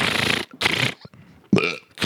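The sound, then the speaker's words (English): A loud, drawn-out burp after drinking a whole 2-liter bottle of Coke comes in several rough, gurgling bursts with brief gaps between them. It sounds harsh, with no talking. “How about the scene where he's eating dinner and he drinks the whole 2 liter of Coke? And he has the epic burp.”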